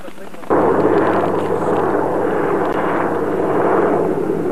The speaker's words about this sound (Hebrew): זה מסוק מעלינו.